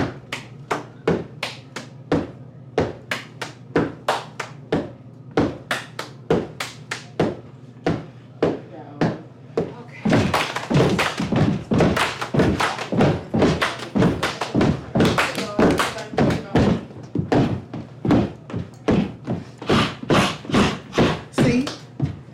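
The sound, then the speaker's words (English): A steady, rhythmic pattern of heavy stomps and sharp claps repeats for over twenty seconds, growing louder and fuller about halfway through as more people seem to join in. “I know the montage house was doing like a clap stomp thing near the end.”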